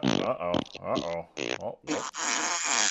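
A fart sound effect: several short, buzzy blats in quick succession, then a longer, louder raspy one that sputters on to the end, prominent.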